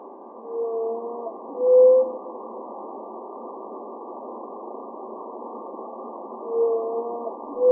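animal, blue whale song

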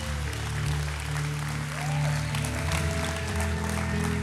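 crowd, audience applause

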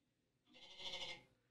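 animal, goat bleating

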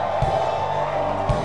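crowd, audience shouting

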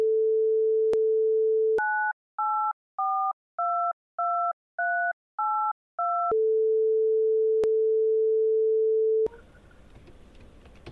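signal or alarm, phone call ringing tone

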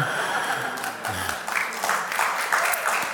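crowd, audience clapping

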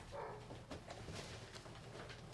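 animal, dogs barking

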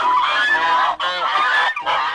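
bird, duck quacking

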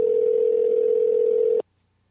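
signal or alarm, telephone dial tone

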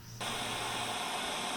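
sound effect, radio static

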